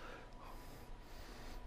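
A slow, steady breath drawn in and out through the nose during yoga practice, with a soft, hissing rasp from the throat, quiet, with no talking.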